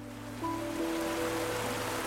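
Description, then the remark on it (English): Steady, continuous rush of flowing cold river water fills the scene at moderate volume, with a low sustained tonal hum beneath it and no voices. “The river was always cold.”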